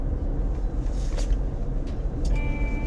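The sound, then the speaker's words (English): Steady low rumble of a car's interior while driving home and pulling up to the driver's building, constant road and engine noise with a few faint clicks and a brief soft tone near the end; no one speaks. “I'm just driving up to my building now.”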